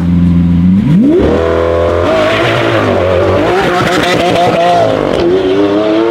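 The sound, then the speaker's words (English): A loud Lamborghini engine revs hard, its pitch climbing steeply as it accelerates, then wavering through rapid shifts and surges before rising again near the end. No voices. “And this is a Lamborghini.”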